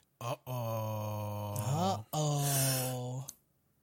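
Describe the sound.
A person yawns, a long, loud, drawn-out voiced groan that breaks briefly and then carries on before trailing off into a breathy exhale.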